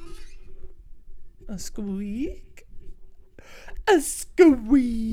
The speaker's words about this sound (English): I gotta fix this squeaky mic. Can you hear this?